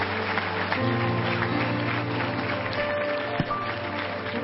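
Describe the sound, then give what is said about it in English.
A church audience claps hands steadily at the preacher's urging, a dense, continuous patter from many people, with sustained musical tones humming underneath throughout. “Clap your hands.”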